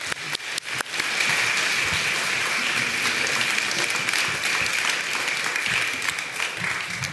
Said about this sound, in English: And so I want to invite up our panel of parents and leaders, invite you to come on up, and let's give them a hand clap as they come on up.